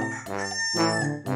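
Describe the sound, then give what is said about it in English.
Loud rooster crowing with no gaps, three brassy, strongly pitched calls following one another quickly and overlapping, with no voices present. “they sound quiet as a feather drop compared to the racket from those roosters on the tubas.”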